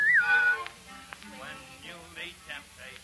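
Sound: person whistling a tune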